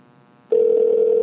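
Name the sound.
phone ringing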